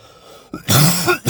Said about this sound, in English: Sorry, just coughed down your fucking ear holes. But we're battling through.